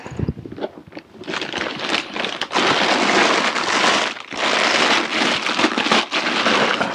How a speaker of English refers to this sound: I'm just packing an instant camera into a plastic bag. And I'm going to put that bag inside my other bag.